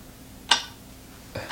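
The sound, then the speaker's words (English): A clock ticking on its own: a few sharp, bright clicks spaced roughly a second apart, fairly loud against a quiet background with no talking. “If you can sleep to a clock ticking like this.”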